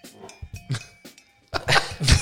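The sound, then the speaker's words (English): A shoe squeaks against the floor in several short, rubbery bursts that sound like a fart, followed by a louder, rougher squeal at the end. No one speaks. “Is that someone's phone vibrating or who just farted? No, it's my shoe.”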